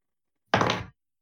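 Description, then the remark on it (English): New dice are rolled for the first time onto a tabletop for a perception check, tumbling in one quick, dense clatter with a thudding body, lasting under half a second and then stopping abruptly. No voices accompany it. “I'm going to roll my new dice for the first time.”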